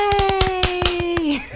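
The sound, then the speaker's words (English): A small burst of quick studio hand clapping, a round of applause for the phone room volunteers, a dozen or so sharp claps in a steady rhythm, with a long sustained vocal cheer held over them that drops off at the end. “we've slap our pseudopods, tentacles, and flippers together in and here. Call it applause.”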